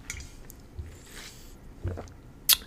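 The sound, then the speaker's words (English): Quiet wet mouth sounds of someone sipping water: a few soft slurps and swallows spread over a couple of seconds, ending with a brief sharp click. No one speaks. “Let me breathe. Let me get a sip of water.”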